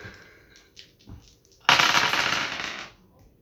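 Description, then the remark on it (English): Dice are thrown and roll across a hard surface: a few light taps, then a sudden clatter that rattles for about a second before stopping abruptly. “I don't know which dice to throw.”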